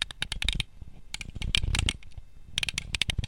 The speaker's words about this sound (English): It's a problem when I'm typing and not looking at what I'm typing.